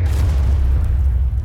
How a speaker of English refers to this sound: Coming in fast and very low, the snake eyes would deploy their high-drag fins as soon as they dropped. This slowed the bomb down enough to allow the jet to fly clear of the blast radius.